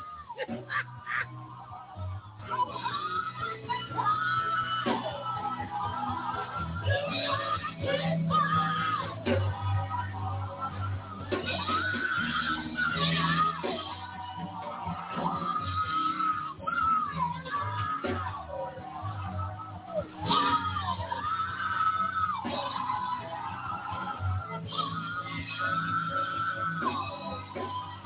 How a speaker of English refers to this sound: I mean, I ain't seen this kind of shouting in a minute.